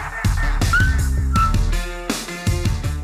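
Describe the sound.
A man whistles a few short, sliding notes of a catchy tune, loud, over a thick, rhythmic backdrop that sounds like pop music playing along.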